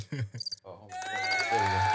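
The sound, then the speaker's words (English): A brief burst of voice gives way to a steady, continuous chirring of crickets, a looping sound-effect drone that fills the rest of the moment at moderate volume. “I did crickets at first.”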